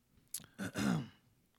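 A person clears their throat and coughs: a short sharp burst followed by a longer, rough, voiced rasp, with no talking around it. They have something stuck in their throat.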